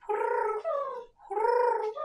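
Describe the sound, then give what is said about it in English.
A person imitates a pigeon cooing with two warbling, throaty coos, each about a second long and dropping slightly in pitch partway through, with no other talking. “You do a really good pigeon sound.”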